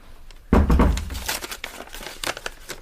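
A paper note that was put through a letterbox is unfolded: a sudden crisp rustle starts the sound, followed by a run of lighter crinkles and crackles as the sheet is opened out. No one speaks.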